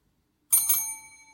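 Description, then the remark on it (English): A bell dings twice in quick succession, two bright metallic strikes whose high, clear tones ring on and slowly fade after an initial silence. “Double ding.”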